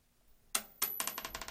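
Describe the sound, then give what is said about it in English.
A nickel coin clicks as it's flipped for heads or tails, lands with a sharp clink, then rattles and chatters in a quick series of bounces as it settles. Fairly quiet, with no voices. “He flipped a fucking nickel.”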